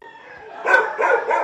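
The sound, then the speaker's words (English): A chorus of over 100 dogs barking and yelping together at the gates of an animal shelter in Manukau, overlapping into a loud, continuous din with bursts of sharper barks, with no talking. “The sound of over 100 dogs greets us instantly at the gates of Manukau Animal Shelter.”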